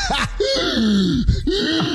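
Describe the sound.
Someone voices strained, wheezy groans mixed with breathy rasps, imitating gasping for air as when trying to laugh with health issues, fairly loud for about two seconds.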